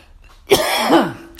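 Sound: cough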